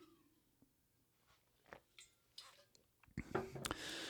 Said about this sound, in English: Man, I need a sip of water. Hang on.